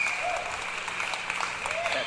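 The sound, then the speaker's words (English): A steady wash of crowd applause played as a sound effect on a call-in show to greet a caller from Pennsylvania: dense overlapping clapping at an even, fairly loud level throughout, with no voices standing out above it. “Little applause. Pyth, play something for him.”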